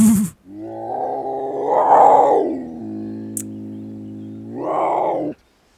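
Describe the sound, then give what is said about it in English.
A person voices a snow leopard's roar: one long, loud, drawn-out growling snarl that swells, eases into a steady rumble, then flares again before cutting off, heard alone. “You wake up, and in front of your hut is a snow leopard.”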